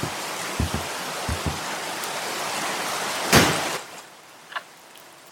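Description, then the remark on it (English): Heavy rain hisses steadily throughout, broken by a few soft low thumps early on and a brief louder rush about two-thirds through; no one speaks. “Come in out of the rain.”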